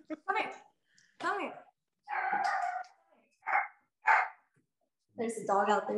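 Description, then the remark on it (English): A dog barks in several short, sharp bursts spaced unevenly, fairly loud, with a voice talking in between. “Now he's barking, because now we're talking about burgers. He's barking.”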